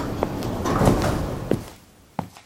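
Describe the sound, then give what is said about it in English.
A door slides or swings open with a low rumbling rush, punctuated by a few sharp clicks and knocks, moderately loud, with no one talking. “Doors opening.”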